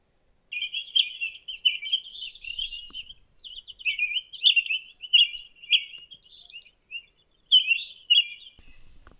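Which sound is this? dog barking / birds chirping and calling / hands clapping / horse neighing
birds chirping and calling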